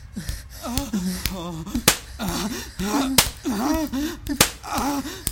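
Several sharp, loud, crisp slaps of a hand striking a person's buttocks land at irregular intervals, with a voice making drawn-out wordless moans between them.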